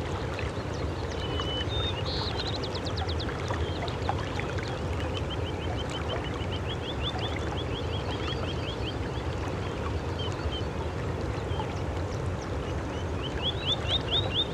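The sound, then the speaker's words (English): Slough Creek, about 80 feet across and 5 to 6 feet deep in places, spills over a series of small waterfalls through a tight canyon in a steady, full rushing roar that never lets up, with quick high pips of a spotted sandpiper breaking through now and then. “Over the rise out in front of us, you can hear it spill over a series of small waterfalls through a tight canyon.”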